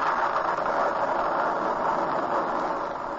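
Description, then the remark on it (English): A continuous roll of thunder, a steady, dense rumble that holds at an even loudness for the whole few seconds without any sharp crack, and no voices over it. “What's that? Thunder!”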